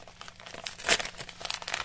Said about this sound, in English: So I've opened the box. And inside the box, that's an envelope. I'm wondering, that's probably going to be my SIM card.